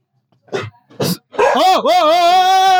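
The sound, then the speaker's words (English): A dog named Sabi barks twice in quick, sharp bursts, then lets out a longer, wavering, howl-like bark. Loud, with no one talking. “Sabi's a fucking guard dog?”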